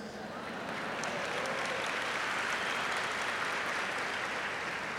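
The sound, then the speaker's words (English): A crowd breaks into sustained applause for the audience members under 35 years old, a dense, steady wash of many hands clapping that swells in the first half second and holds at a constant loudness throughout. “First of all, let's clap it up for all these young fuckers.”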